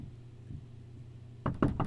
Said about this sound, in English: Come in. Somebody's at our door.